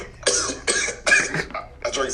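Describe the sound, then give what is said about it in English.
A fit of four harsh, sputtering coughs after water went down the wrong way, coming in quick succession about half a second apart, with a short gasp before the last one. “I'm finna cough. It's not COVID.”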